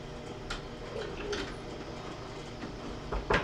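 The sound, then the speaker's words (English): A closet door creaks open with nobody inside the closet, with faint squeaks and a soft scraping rattle toward the end as it swings. No one speaks. “Okay, and just to prove nobody was in that closet when that door opened, the door doesn't open by itself, I'm going to pull it open a tiny bit, and it won't open the rest of the way.”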